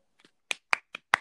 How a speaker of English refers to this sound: Give yourself a clap